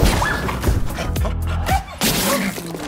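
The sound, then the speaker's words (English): A big dog sneezes loudly, with sharp, forceful bursts of breathy noise, mixed with thumping and clattering sounds in a busy scene. “Ooh, bless you.”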